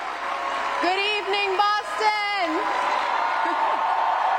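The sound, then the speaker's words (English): A crowd of about 3,000 people at the MGM Music Hall cheers and applauds during Wu's State of the City speech in a steady, dense wash of noise that runs the whole time, while a single raised voice rings out over it for a couple of seconds. “They kept cheering as Wu dove into a list of new policy proposals.”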